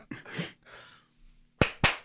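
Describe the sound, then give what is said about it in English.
Two loud, sharp claps in quick succession, made as a sync marker at the start of a recording so it can be edited, follow a stretch of soft breathy rustling and low hiss. “No, I was dropping a marker so start I knew the recording.”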